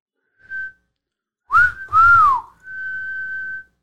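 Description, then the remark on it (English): A person whistles a short call used for calling dogs: a brief high note, then two loud sweeping whistles rising and falling, ending on a long steady held tone. Clear, with no talking. “My whistle for my dogs is...”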